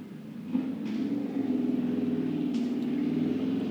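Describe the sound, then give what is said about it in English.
A steady low engine rumble from a car passing in the background carries on throughout, moderately loud and continuous, with a few faint higher hisses over it and no voices. “That's your thinking sounds. The car in the background.”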